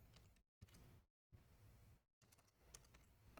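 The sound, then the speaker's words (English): Quiet keyboard typing in a few short bursts separated by brief pauses as a zip code is entered while looking up a Ford F-150 in stock; soft clicking keystrokes with no one speaking. “Okay, put in our zip code real quick.”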